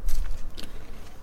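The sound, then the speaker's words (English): A crunchy bite into a Kit Kat wafer bar with honeycomb-flavoured chocolate and bits of honeycomb through the centre, with a few sharp crackling snaps in quick succession that fade into quieter chewing. “Nice crunch.”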